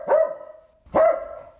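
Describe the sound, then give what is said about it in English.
A Pointer dog named Pepper gives two loud barks about a second apart, each a sharp yelping onset that trails into a short, ringing tone, with no one talking. “Well, Pepper the Pointer over there says dogs are expert sleepers, and their sleep is a lot like ours.”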